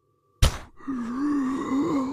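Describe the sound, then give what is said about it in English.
A sudden, loud booming gasp of breath from a corpse bursts out, then gives way to a low, wavering groan that drones steadily for over a second. “And as Shikar lands 10 feet away from that corpse, there is a booming intake of breath that you all hear.”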